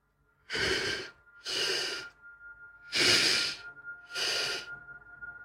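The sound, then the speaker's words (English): A voice imitates the heavy, labored breathing of a woman lying on a bed: four loud, drawn-out breaths, each about half a second to a second long, evenly spaced, with no talking. “And I noticed she was just lying down on the bed, just breathing like...”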